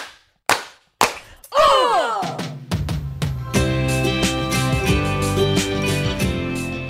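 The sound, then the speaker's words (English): Three sharp, loud hand claps done together on a count of three land at an even, quick pace, followed by swooping tones that settle into a sustained, ringing musical chord. “We're doing three clap.”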